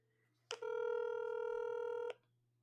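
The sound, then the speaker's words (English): A telephone call being placed: one steady electronic phone tone holds for about a second and a half, clicking on and off, with a faint low hum underneath and no voices. “let's pull him up on the old telephone.”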